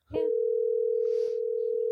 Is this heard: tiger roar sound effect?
no